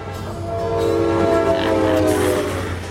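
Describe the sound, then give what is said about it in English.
A steam train rumbles along while its whistle screams loudly and steadily over the rolling noise for several seconds, with no voices. “Big trains rolling down the cold steel track.”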